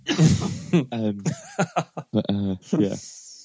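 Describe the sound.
A man coughs close up, a rough burst at the start followed by a string of short, throaty, voiced coughs and vocal sounds in an uneven rhythm.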